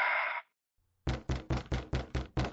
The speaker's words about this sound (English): But as you're all looking, you all hear a bang, a really loud bang coming from the door. Bum, bum, bum. No one's here. Bang, like someone's knocking on the door? Yes, like someone's knocking from the outside of the door.